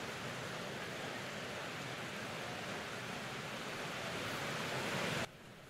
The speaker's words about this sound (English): Jesus, what a beautiful thing it is to be able to come here and just to hear something as noisy as the rain like that, and then to hear it calm and to slow.